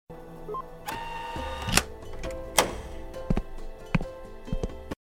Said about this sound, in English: Slurpee machine. What is that? Isn't that like opening a door, like getting a key pass into a door?